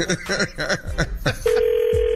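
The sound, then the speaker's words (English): Someone speaks briefly, then a steady, mid-pitched electronic phone tone cuts in and holds unbroken to the end, like a call ringing through on the line. “Oh, Tosh, call now.”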